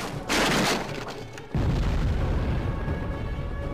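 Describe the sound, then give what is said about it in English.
A sharp, hissing burst gives way to a heavy booming crash as a door is punched open with the B button in a video game, followed by a loud, rumbling low roar that lingers without speech. “B to punch the door open.”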